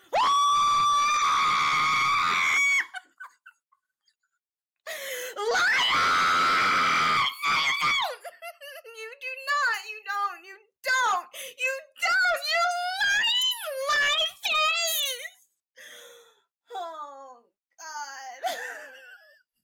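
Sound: person screaming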